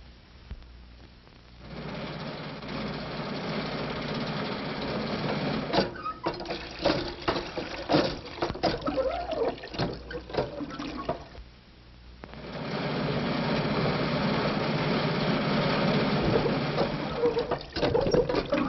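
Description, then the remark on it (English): A battered, crippled car's engine coughs and sputters to life with rough, irregular rattling, breaks off briefly, then settles into a loud, steady roar as Betty drives off in it to get help. “Meanwhile, Betty, frantic at her uncle's danger, has undone her bonds and is starting for help in the crippled car.”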